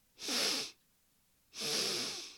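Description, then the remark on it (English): Two airy inhalations through the nose, fairly strong, separated by a short pause, as someone sniffs to smell food being cooked on the other side of the road. No one speaks. “Christopher took a few sniffs and smelled 100 different things being cooked up on the other side of the road.”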